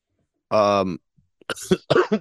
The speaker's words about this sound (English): God, I just want to stop coughing, so that'd be great.